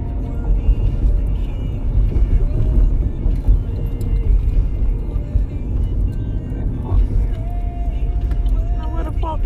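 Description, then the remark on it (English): A bus rumbles along the street with a steady, loud low engine drone that fills the whole stretch, while muffled voices come and go faintly underneath. “That bus right?”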